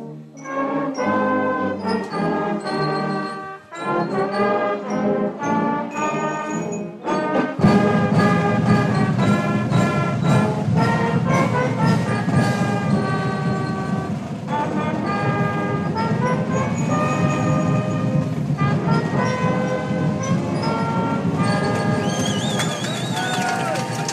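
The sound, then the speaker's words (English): The Strath Haven marching unit plays the Star Spangled Banner at a high school football game, brass holding long, swelling notes; after a few bars the drums and a fuller low rumble join in, and the music stays loud and steady. “That's the 12th man, the Strath Haven marching unit, banging out the Star Spangled Banner tonight.”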